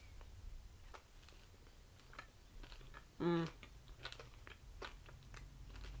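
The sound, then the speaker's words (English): Crunchy chewing of white bread spread with Nutella instead of butter and topped with rainbow sprinkles, with a steady run of small crackling bites and crunches throughout and a brief hummed voice near the middle. “It's like crunchy Nutella bread.”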